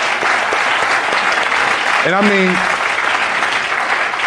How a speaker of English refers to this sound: And yeah, he's worthy of applause. I think that he is.